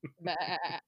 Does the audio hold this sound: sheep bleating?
yes